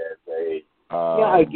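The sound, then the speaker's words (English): A caller's voice comes back as a delayed echo from a radio playing too loud, with short bursts of talk followed by a fuller, resonant stretch of speech. “I got your echo. I think you got your radio too loud.”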